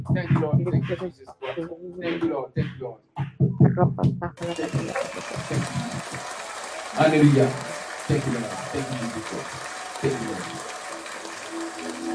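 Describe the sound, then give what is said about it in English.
A voice speaks for a few seconds, then a church audience breaks into steady, dense applause for the Holy Ghost that carries on to the end, with a voice still calling out over the clapping. “Applaud for the Holy Ghost, my brother, my sister.”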